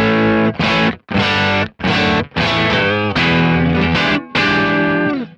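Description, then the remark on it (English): An electric guitar played through a Super Lead 100 amp profile, with a light crunchy, mildly overdriven tone, plays loud phrases of sustained notes and chords separated by brief pauses, with no one talking. “So light crunch sound, not much of overdrive.”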